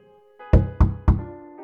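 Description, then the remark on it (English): Three evenly spaced knocks on a bedroom door, dull, each a short thud with a brief ringing tail, over a faint steady background hum. “But just as she finds herself on the edge of dreaming, she hears that sound again. Three soft knocks on her bedroom door.”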